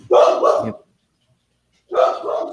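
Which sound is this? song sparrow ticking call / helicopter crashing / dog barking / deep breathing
dog barking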